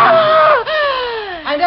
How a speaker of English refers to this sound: What happened? Why did you scream?